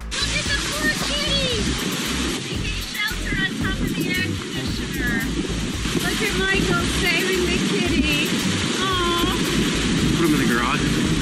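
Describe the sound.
Hurricane Ian's wind and heavy rain roar outdoors in a constant, dense rush of noise, with faint voices breaking through the storm now and then, as a man goes outside to grab a cat from on top of an air conditioner and bring it inside.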